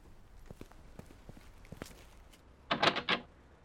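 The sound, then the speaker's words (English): Soft footsteps approach, then a locked door is yanked and rattled in three or four quick, loud jolts as someone tries to open it. No one speaks. “It's locked.”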